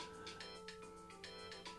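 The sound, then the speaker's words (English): A phone ringtone for an incoming call flagged as scam likely plays on its own, a steady electronic melody with short bright notes repeating in quick succession, fairly quiet and continuous throughout. “Who the fuck is calling me? Who the fuck has their phone on?”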